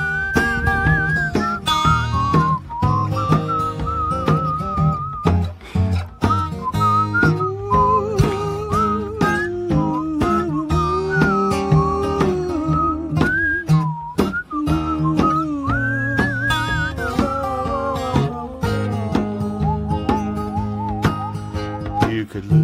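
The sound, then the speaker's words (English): A clear, bright whistled melody carries a lively tune from start to finish, weaving over a steady instrumental accompaniment with bass and percussion underneath. “we've got a whistle solo coming from …”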